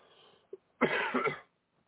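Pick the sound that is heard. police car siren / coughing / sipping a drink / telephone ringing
coughing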